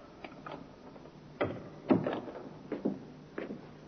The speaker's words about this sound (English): The door, Inspector. I heard it, Sergeant.